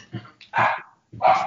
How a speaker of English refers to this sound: Oh, and that just to bump up the quality of our conversation, Isabel just heard your voice and is barking at the door now.